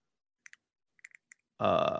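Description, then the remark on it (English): A handful of sharp mechanical key clicks from a sample key that came with a Razer keyboard, in quick uneven bursts, followed abruptly by a loud, drawn-out throaty vocal sound like a burp. “It's like a little like sample key, so you could feel how the and hear how the or the mechanical the clicking key.”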